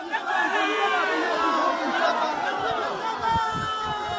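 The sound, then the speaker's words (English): A crowd of witnesses in a video, many overlapping voices shouting and cheering at once after a man opens fire on a woman accused of adultery in an execution, a steady, dense roar of excited chatter that stays loud throughout, with a few low thumps toward the end. “A man opens fire, and then witnesses are heard cheering.”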